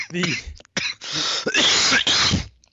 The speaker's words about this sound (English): Quit coughing in the microphone.